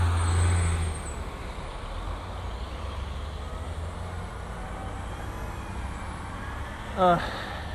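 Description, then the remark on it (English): A large bus rumbles past, its low engine drone filling the scene, then a brief sharp hiss-squeal of air brakes near the end. “Bus got in the way.”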